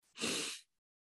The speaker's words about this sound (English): Referring to breathing consciously. And what that is you're breathing in deeply through your nose.